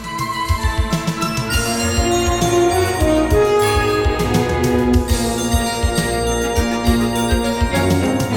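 Driving orchestral film music with interweaving contrapuntal lines over a steady, punchy backbeat; dense, loud and rhythmic throughout, with bright bell-like accents on top and no voices.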